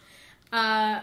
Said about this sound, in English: Sorry, I'm like just burping here. I'm like, oh. I burp.